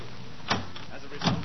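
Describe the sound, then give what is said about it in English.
A stuck, locked door being rattled: two brief, loud jolts of the door shaking in its frame, under a second apart, over a low murmuring background. “It must be stuck.”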